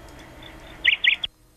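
A bird chirps through a thin, tinny phone line that got crossed just before a call was hung up: a faint background hiss, then three quick bright chirps in close succession before the line abruptly goes silent.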